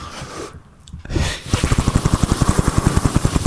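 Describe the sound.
Someone imitates a helicopter with their mouth: after a brief breathy lead-in, a fast, steady chopping pulse starts up and keeps going, fairly loud, like rotor blades whirring.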